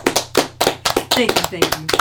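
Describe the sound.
A short round of applause from a few people, quick uneven claps in a steady patter with a voice briefly talking over it.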